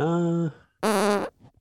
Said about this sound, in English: Hold on, I got a fart.